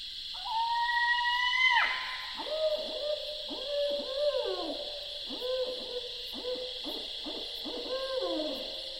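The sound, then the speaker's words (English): A barred owl gives its rarely heard scream call at night: a drawn-out rising scream, then a quick run of about a dozen descending hoots, clear over a steady buzz of night insects. No one speaks. “And just as I was beginning to doze off, yet another extraordinary voice of the night, the rarely heard scream call of a barred owl.”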